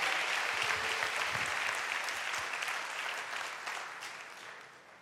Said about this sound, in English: Give the Lord a hand clap of praise if you would.